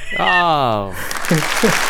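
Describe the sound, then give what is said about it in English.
A single voice lets out a long, falling cry, then a dense burst of crowd applause and cheering from a sound effect takes over for about a second, loud, with brief vocal whoops inside it. “the crowd loves it.”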